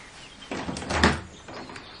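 Glass-paned French windows are pushed open, with a rattle and scrape peaking in a solid clunk, followed by a couple of softer knocks as they settle. No one speaks.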